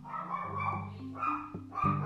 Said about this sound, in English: And as you can hear, with my dog barking in the background, life can be chaotic.